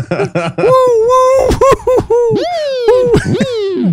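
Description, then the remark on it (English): A voice imitates a police siren over a PA, loud and wordless, with repeated rising and falling wails that swoop up, hold, then drop over several quick cycles. “Do not be tempted to pretend you are a police siren on that PA, because I got busted once doing that.”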